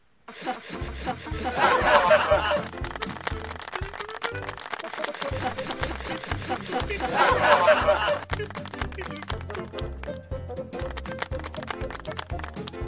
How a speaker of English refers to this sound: Can we get some canned laughter and applause while we take our exit?